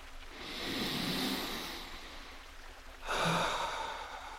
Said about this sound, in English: So I invite you to take a deep breath in and a long, slow breath out.